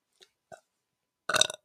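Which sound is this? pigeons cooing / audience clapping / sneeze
sneeze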